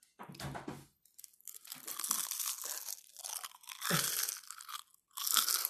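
Loud, crisp crunching and chewing, ASMR style, with repeated bursts of crackling bites and wet mastication filling nearly six seconds, no talking.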